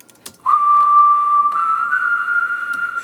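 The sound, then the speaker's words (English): A sustained whistled tone, unnaturally steady with abrupt stepped pitch jumps like heavy auto-tune, plays alone and loud for about two and a half seconds after a brief click. “So auto-tuned, heavily auto-tuned whistling.”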